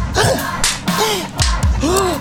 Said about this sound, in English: Like, maybe you guys should stop slapping each other.